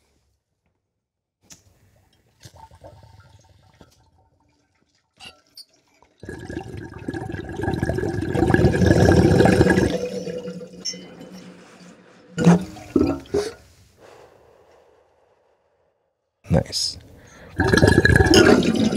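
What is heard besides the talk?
bong water bubbling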